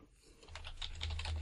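Rapid typing on a computer keyboard by a person who is talking at the same time, a steady run of light clicky keystrokes, over a low steady hum that swells partway through.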